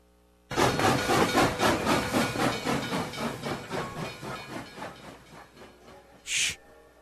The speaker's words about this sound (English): The train was riding sort of funny today. It was. Like it was bigger, larger than light. I don't know. It was, the train didn't ride smooth today. It felt like a nostalgia train, if you will.